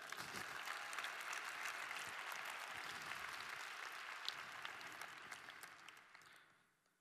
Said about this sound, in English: Let's clap it up for her.